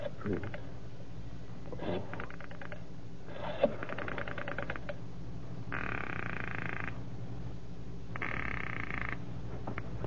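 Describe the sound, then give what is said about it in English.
A telephone is picked up and dialed at almost midnight, with short bursts of rapid clicking followed by two steady, buzzing tones about a second each, all over a low, constant hum. “It's almost midnight when you pick up the phone, determined this time.”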